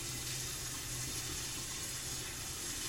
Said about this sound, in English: Oh, I was gonna draw a bath, maybe. Let all of this sink in. I'll start the water for you.